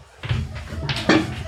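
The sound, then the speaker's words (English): A door closes with a soft thud and a brief rattle, followed by a sharper knock of the latch about a second later, with low background murmur throughout. “Could you shut that door for us?”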